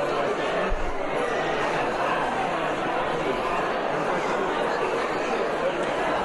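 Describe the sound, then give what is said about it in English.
A steady wash of crowd chatter at a debate venue before a debate, many overlapping voices murmuring at a constant, fairly loud level with no single speaker standing out, and a faint hint of laughter. “If not, we will discuss the outcome of the debate on the show, probably right after this little segment, but I thought I'd just give you a small taste of the sound of the crowd here.”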